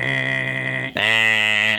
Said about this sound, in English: Next one off the board was that the Vikings will win the NFC North. That was predicted by me. Do you guys want to give me the buzzer for that one?